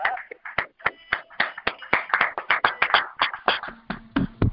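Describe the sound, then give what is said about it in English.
A brief round of applause: quick, sharp hand claps patter in an uneven, steady stream for several seconds at moderate loudness, with no voices over them. “So, I just want to give you a little round of applause for that.”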